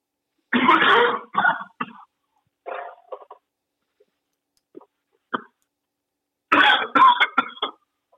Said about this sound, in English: Taking a time out for COVID cough here. Yeah, COVID. COVID attack.